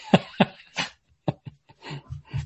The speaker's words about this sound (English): I don't know what is going on with the dogs. They're like trying to climb in my chair.